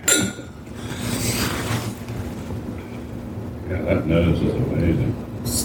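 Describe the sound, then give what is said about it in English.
Glasses clink together in a toast near the start, a bright ring, followed by low indistinct voices and murmur, as people toast a new release that sold out at a distillery. “Well, cheers.”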